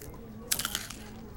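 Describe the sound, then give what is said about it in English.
Someone bites into sour cream and onion potato chips from a vending machine, giving a quick cluster of four or five crisp, bright crunches over about a third of a second, then quiet over a low steady hum. “Got you some chips from the machine.”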